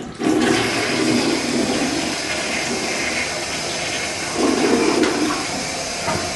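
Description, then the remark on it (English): A toilet flushes after someone has finished peeing, with a loud rushing whoosh of water, swelling again midway before settling into a steady gurgling refill. No voices are heard. “I'm gonna flush.”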